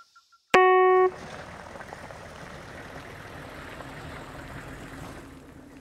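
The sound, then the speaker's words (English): A sudden loud, tonal blast opens, then a truck engine settles into a steady, low idling rumble that carries on evenly to the end, with no voices. “I'm under one of their truck things, like a fish in a barrel. The truck beside me drove away, and now I can't escape”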